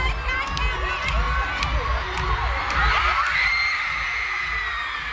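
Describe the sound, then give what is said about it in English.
A large concert crowd roars and cheers continuously as the performer bursts out onto the stage, with high-pitched shrieks and whoops rising above a dense wall of noise and a few sharp bangs near the start. “here's the moment he exploded out on stage. Have a listen.”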